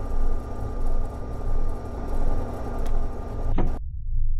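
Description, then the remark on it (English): Spaceship bay doors slide open after the bay chamber has been depressurized to vacuum, with a loud, steady mechanical hum that pulses rhythmically, then end in a sharp clunk followed by near silence. No voices. “Open bay doors. Bay doors opening.”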